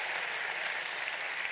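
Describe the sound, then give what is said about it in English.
A church audience claps together for the choir in a dense, steady burst of applause, many hands blending into a continuous crackling wash at an even loudness, with no voices over it. “Let's get a choir hand clap.”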